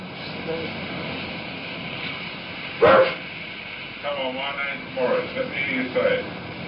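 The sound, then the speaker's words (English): A dog on the British TV show That's Life gives one sharp bark, then a string of warbling, drawn-out vocal sounds shaped like spoken words, heard fairly clearly over a steady hissy background. “And around about the same time, there was a dog on British TV show That's Life who could also talk.”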